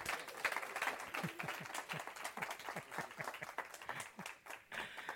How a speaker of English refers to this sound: Yeah, y'all give him a hand clap.